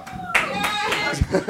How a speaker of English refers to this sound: Really reluctant random applause for you.